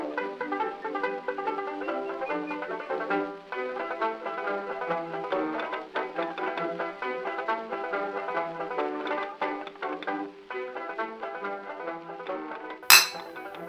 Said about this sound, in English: That was a clink of some beer that's nearly finished. I wish we had more beer. We need more beer.